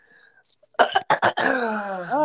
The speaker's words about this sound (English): Don't clear your throat. Don't clear your throat.